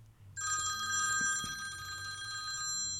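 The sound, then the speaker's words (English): A telephone rings with a bright, continuous electronic trill, loud, sustained for a couple of seconds before cutting off, with a faint low hum underneath. “And that's my first phone call during the podcast.”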